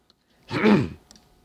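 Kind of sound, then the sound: food or drink, sipping a soda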